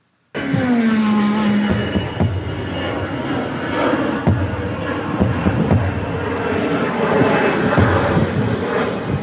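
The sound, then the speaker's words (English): Airplane noise cuts in abruptly: a loud engine roar with a whining tone that slides down early on, then settles into a steady, rumbling drone for the rest. “Airplane noises.”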